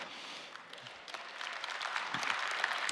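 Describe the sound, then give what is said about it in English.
One person's hand clapping, quick and steady, rising slightly in loudness over about three seconds, with no voices. “There was one person going, that's good enough to clap for.”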